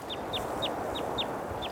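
A bird moving through willow trees chirps six short, descending notes in a quick, steady rhythm, fairly clear above a constant rushing wash of a mountain stream of snowmelt flowing fast over golden sand.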